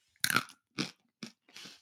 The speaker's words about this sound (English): And then I'm going to crunch on some crunchy corn.